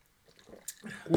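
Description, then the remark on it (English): Someone quickly sips and swallows a shot of tequila, with soft wet slurping and gulping sounds, ending in a louder breathy burst. “You're supposed to savor it. Don't take the fucking shot.”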